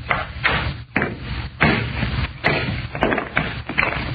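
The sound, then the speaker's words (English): A hammer strikes a stone, a meteor of almost solid metal, to break it along a fissure: about seven loud, sharp blows at an uneven pace, each one a hard cracking knock with a brief ringing tail. “All I'm going to do is try and break it along this fissure. You had a hammer and a stone.”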